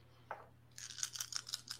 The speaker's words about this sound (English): Add an extra die, so I think you're rolling five dice in total to hit. Well, that would make it five dice? Yeah, five dice.